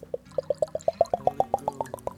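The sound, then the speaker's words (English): RC Cola glugs out of a bottle into a cup in a quick, steady run of about twenty hollow pulses, moderately loud, with a faint fizzy hiss underneath and no talking. “would you pour me up a cup of that RC Cola, please?”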